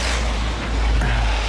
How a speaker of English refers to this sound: And there's the noise of a few cars go by.